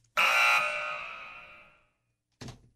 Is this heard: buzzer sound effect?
yes